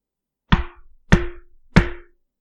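Three firm knocks on a door, evenly spaced about half a second apart, each a sharp thud with a brief hollow ring trailing after it. No voices are heard.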